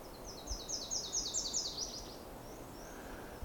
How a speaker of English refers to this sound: Okay, so we have Swainson's thrush in the distance.